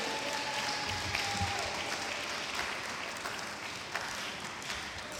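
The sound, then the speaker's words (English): A church audience claps steadily and densely, a continuous wash of many hands applauding at once, with faint crowd voices underneath throughout: a clap offering to receive a visiting reverend. “Let's receive him with a clap offering.”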